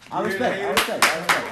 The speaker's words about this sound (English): I don't want that hand clap.